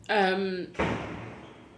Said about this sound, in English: Someone just slammed the door.